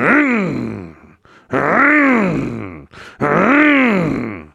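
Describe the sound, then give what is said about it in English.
A voice imitates the engine of a tractor parked outside a van being revved, three loud droning vocal bursts, each swelling up in pitch and sinking back down, with short gaps between them. “Apparently, at that point, the guy noticed my van and made a beeline for it, parked outside the van, and just revved the engine.”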